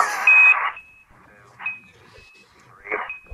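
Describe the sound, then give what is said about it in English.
A sequence of high, sonar-like electronic pings, a sonar picking up Buzz Aldrin calling in live from the International Space Station, repeats at irregular intervals, each ringing briefly and some layered with bursts of crackly static. No one speaks. “I think it's picking him up on our sonar.”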